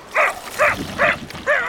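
A dog barks four times in an even rhythm, each bark short, loud and fairly high-pitched, with no voices over it.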